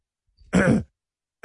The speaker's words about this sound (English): He has to clear his throat before he says it. Go ahead. Get it all out.